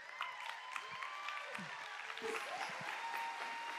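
A crowd breaks into sustained, dense applause as the local missions coordinator is called up to speak, a steady wash of many hands clapping for several seconds, with a few whoops and whistles rising above it.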